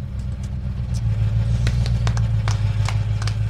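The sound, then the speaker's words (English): The engine of Grease Lightning, the car from the film Grease, rumbles steadily in a studio, a deep low idle with a throaty hum that holds level throughout, punctuated by faint clicks and ticks above it. “How'd you get the car in the studio?”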